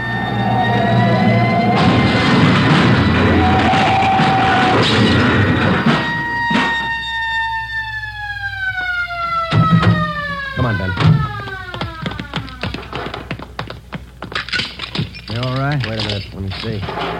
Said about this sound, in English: They better not turn. That's what they're doing. Look at that trailer whip. They're going over. Into that storefront.